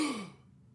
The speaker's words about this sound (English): I wrote gasp, so I have to, yeah.